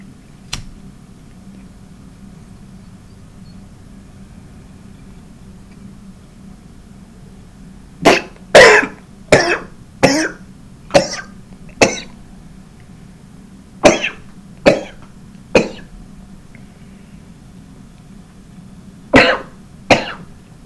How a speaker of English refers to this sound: That's my cough. This is my week. This is my cough. This is my gasp for breath.